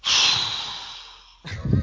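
A person does an exaggerated, heavy breath into the mic: a loud, rushing exhale that fades out, followed by a sharp new intake of breath. It is close, breathy and theatrical, with no talking.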